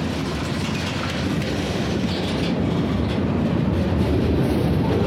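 A moving train rumbles steadily and loudly, its heavy low roar mixed with a faint rhythmic clatter of wheels on track, with no voices.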